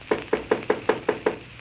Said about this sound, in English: Who knocks? Hassan, the wazir. Enter, Hassan.